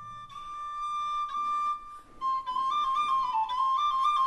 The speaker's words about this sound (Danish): Og så hører de i det fjerne sådan en fløjte.